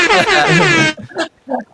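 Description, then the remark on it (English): A loud, blaring air horn blast lasting about a second, harsh and buzzy with a slightly wavering pitch, followed by a couple of brief voice sounds. “Air horn for being a pussy.”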